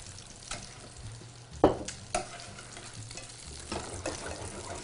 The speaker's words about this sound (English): I'm going to go ahead and slow this fish down just a little bit more. Nice gentle saute on the fish.